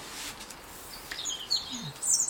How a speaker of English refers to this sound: Robin. And then there's a great tit in the background.